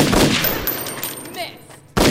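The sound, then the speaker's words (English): Two loud gunshots, the first a broad sharp blast trailing off in a ringing decay, followed by a quiet lull before a second abrupt shot cuts in at the end. “Whoever you are, shoot that bitch.”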